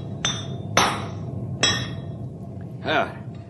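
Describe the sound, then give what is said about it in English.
Three sharp, ringing metallic hammer blows on a king-size horseshoe being fitted to a big horse named Storm, struck at an uneven pace, followed by a short low voiced murmur over a steady background hum. “This horse of yours takes a king-size shoe, man.”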